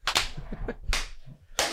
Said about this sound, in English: When I clap my hands, he's gonna appear.